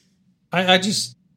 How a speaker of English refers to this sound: No, I think I keep yawning. No, is that what it is?